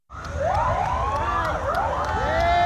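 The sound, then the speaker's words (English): Several police sirens of a police motorcade escorting the remains of Army Reserve Sergeant Brianna Moffitt from Savannah's airport in Savannah, Georgia, wail at once in overlapping rising and falling sweeps, loud, over a low rumble of engines, with no talking. “As GPB's Benjamin Payne reports, her remains were escorted from Savannah's airport by a police motorcade.”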